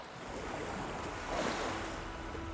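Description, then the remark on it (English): Indian Ocean waves, Tanzania, East Africa, wash and roll steadily in a broad, continuous roar, with a slightly louder swell midway and a faint wind rush over the surf. No voices are present. “And the Indian Ocean.”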